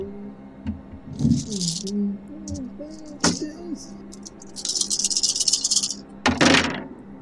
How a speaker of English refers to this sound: Oh. That's a lot of dice. Oh.